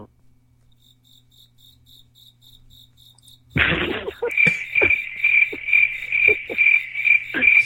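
A cricket chirps in a steady pulsing trill, faint at first, then suddenly very loud, shrill and insistent with a few sharp knocks underneath.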